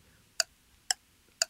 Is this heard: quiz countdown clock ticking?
yes